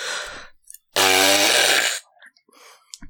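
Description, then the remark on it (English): A voice imitates a fart by buzzing the lips, one loud, low, raspy blurt lasting about a second, with softer breathy sounds before and after it. “do your fart noise?”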